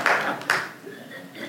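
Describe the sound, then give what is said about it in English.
An audience at a church sermon gives a brief, scattered round of clapping, with a couple of louder bursts early on that fade into light, reverberant applause and faint murmuring. “You can clap for that one, between Genesis and Revelation.”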